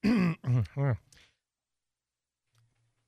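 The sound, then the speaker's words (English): Three loud, harsh coughs from a person with a cold come in quick succession, each with a throaty rasp, followed by near silence with a faint low hum. “Cough. We're all sick.”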